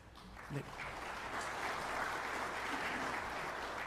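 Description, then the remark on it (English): A crowd applauds in a steady, dense wash of clapping that holds at an even loudness for about four seconds, with a brief voice cutting in near the start. “You're going to be holding that applause, because here's where the road gets bumpy.”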